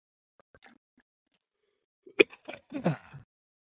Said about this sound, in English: Excuse me while I gulp some water.